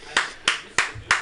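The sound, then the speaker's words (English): Four sharp, crisp hand claps in a steady, evenly spaced rhythm, a lone person clapping for a guest on a radio show, each clap a bright burst with a quick decay. “Am I the only one clapping”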